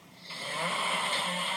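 A single drawn-out snore from a man asleep, a rough, breathy rasp that swells in loudness over a second or so and holds, with no talking.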